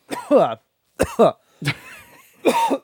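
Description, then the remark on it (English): Four harsh, throaty coughing fits in quick succession after swallowing a bug, each a loud burst with a raspy, voiced strain, separated by short silences. No speech. “I think I swallowed a bug.”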